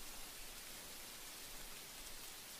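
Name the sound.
steady rain falling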